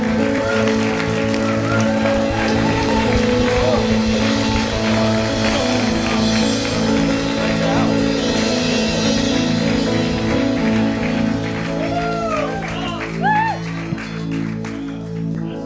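A standing crowd in Amsterdam applauds Tommy Tenney steadily for the whole stretch, a dense, even wash of clapping with a sustained tonal hum underneath and a few whoops rising near the end.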